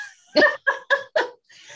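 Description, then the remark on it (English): A dog growls at its owner in four short, sharp bursts in quick succession, fairly loud, with a faint trailing rumble afterward and no one talking. “So I appreciate your patience with my dog that's growling at me.”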